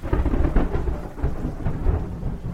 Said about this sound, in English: It's the evening of April 3rd. As thunderstorms rage outside, Martin Luther King speaks on behalf of the sanitation workers to several thousand followers in downtown Memphis.